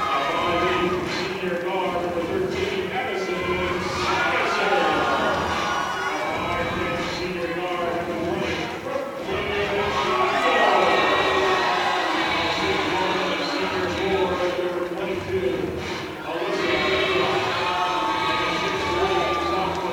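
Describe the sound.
A loud Legacy crowd cheers and yells continuously at a girls' game between Legacy and Jamestown, a dense wall of many voices with rhythmic clapping or stomping woven through, swelling slightly midway and staying strong throughout.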